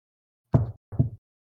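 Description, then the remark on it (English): Knuckles rap twice on a wooden table of real wood, then start a third knock at the very end; each knock is a short, hollow thud with a quick decay, and no one speaks. “I knocked on a wooden table.”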